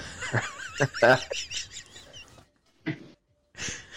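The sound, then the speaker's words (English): A small dog barks and yaps in a quick, high-pitched flurry, then falls quiet before two more short, sharp barks ring out. “My dog says hello.”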